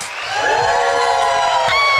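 A loud crowd cheers continuously for about two seconds, a dense wash of voices with whoops rising above the roar, steady throughout.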